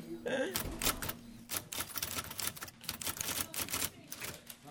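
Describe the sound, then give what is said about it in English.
Rapid, uneven bursts of mechanical typewriter keystrokes in a typewriter shop, each a sharp clack of type slugs striking paper, fairly loud, with a brief mechanical whir at the start. “Keystrokes, slugs hitting paper, these nearly extinct sounds are the daily soundtrack at Philly Typewriter.”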